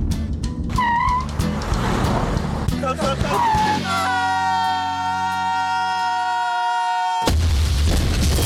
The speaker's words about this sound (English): Took the shortcut, huh? Have a car wreck?